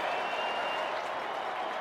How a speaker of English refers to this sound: No, they're still cheering. They don't even care what the game's going on. They could care less about the game now. They just want to talk, cheer OV. A standing ovation. And a full house here at Capital One Arena.